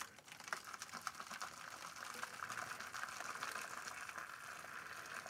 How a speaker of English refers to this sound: Oh, there's a sound effect that matters. Kettle is on the boil. Gonna go ahead and fill my water bath.